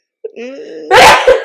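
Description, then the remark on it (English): A single sneeze, fairly loud. A rising, voiced intake builds up before a sharp, noisy burst, followed by a brief trailing puff. No talking. “Bless you again.”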